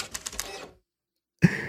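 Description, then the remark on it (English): A printer runs with a rattling mechanical whir and rapid clicking pulses, stops abruptly for a moment of silence, then starts up again with a loud clunk. “Oh, printer's still working though.”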